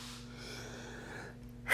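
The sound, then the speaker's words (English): A quiet, drawn-in breath builds for over a second, then a single loud, abrupt sneeze bursts out at the very end, with no talking. “That's three times I don't sneeze.”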